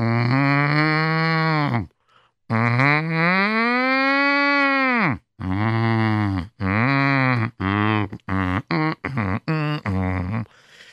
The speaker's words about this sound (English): And people were hustling and bustling. And you heard all kinds of animals in the streets. And you heard not just the sheep, you heard cattle also.